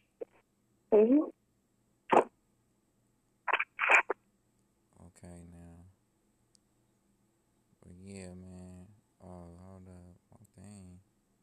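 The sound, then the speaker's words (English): Choppy, glitching phone-call audio: a few sharp digital chirps and clicks, then broken, stuttering fragments of a distorted voice cutting in and out between brief silences. “Phone glitching and stuff. I thought something was wrong with the recording.”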